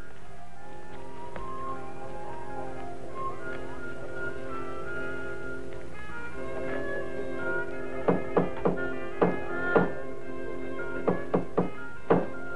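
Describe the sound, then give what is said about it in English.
A hammer drives a nail into a wooden church door, nailing up a notice, with about nine sharp knocks in two short bursts, struck over a steady, sustained musical drone that fills the background. “Nailing a notice to the door of the church was not unusual, for this was the customary place to post announcements of both university and public events.”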